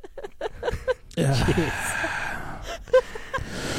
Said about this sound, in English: I will also start breathing heavily and swallowing.